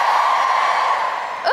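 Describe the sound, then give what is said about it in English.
A crowd cheers in one loud, steady roar of mixed voices that holds throughout, with a single rising whoop breaking through right at the end. “Two, give me a cheer. Three, give me a cheer.”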